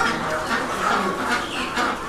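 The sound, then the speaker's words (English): A crowded chorus of poultry clucking and squawking all at once in a live-bird slaughterhouse at 94th Avenue and 100th Street holding about 150 birds, ducks the loudest, many birds overlapping in a steady, fairly loud din, with no one talking. “There are about 150 birds in Madani Halal at any one time. The ducks are the loudest.”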